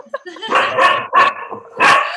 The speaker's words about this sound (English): Sorry, my doggy started to bark, so this part was cut out.